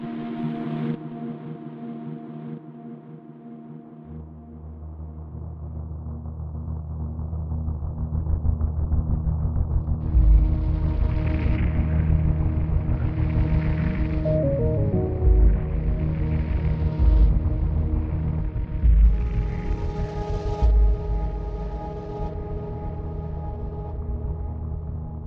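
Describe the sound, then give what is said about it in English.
A brooding musical rage theme, used in a show's trailer and throughout the show, like a cauldron of bubbling lava: deep rumbling bass under sustained droning tones, with rough, seething bursts surging every few seconds, no voices. “And I wrote this rage theme that we used in the trailer, and we use it throughout the show, which is kind of like this sort of cauldron of like bubbling lava and sounds.”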